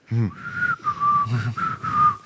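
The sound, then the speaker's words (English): A person whistles a slow, eerie tune with long sustained notes that bend and glide, clear, with a brief low vocal sound at the start. “you hear where he's whistling, a bit like the Kill Bill”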